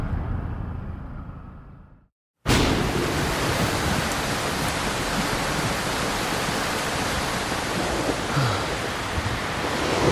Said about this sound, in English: Oh shit, just got caught in some super intense rain. Wow, we're scootering home and the skies just fucking opened up on us. I am completely soaked.